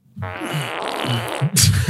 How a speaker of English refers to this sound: We could cut that part out. We could just do a bunch of fart noises.